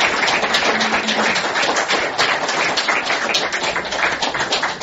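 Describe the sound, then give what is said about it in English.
A crowd applauds a speaker's presentation steadily, dense overlapping claps forming a loud, even wash of sound that holds for several seconds without pause or voices. “and I want to clap her. I hope you will.”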